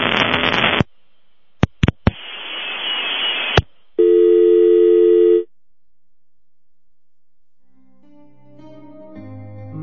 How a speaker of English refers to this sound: My phone's going a little crazy.